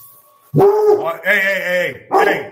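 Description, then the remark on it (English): A dog barks excitedly, letting out a long, loud, drawn-out yowling bark followed by a second shorter one, reacting to a doorbell ring, with no other sounds around it. “My dog's going nuts because he heard the doorbell ring.”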